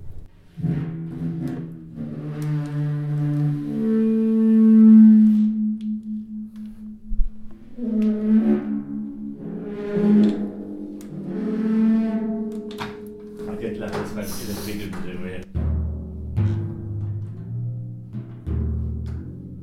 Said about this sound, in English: Making whale noises on timpani may sound like just messing around with the instrument, but most sounds which can be made with percussion can also be used.